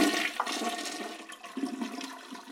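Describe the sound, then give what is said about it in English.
A toilet flushes, a steady rushing gurgle of water swirling down the bowl for a couple of seconds, with no voices over it. “Either way, it ends up back in the sewer when we flush the toilet or pour it down the drain, becoming what we call wastewater.”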